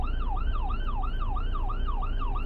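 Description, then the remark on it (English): A fire truck siren, responding to an accident, blares in a rapid, repeating rise-and-fall yelp, loud, over a steady low rumble of engine and road noise, with no talking. “Well, there's a fire truck now because of that accident back there.”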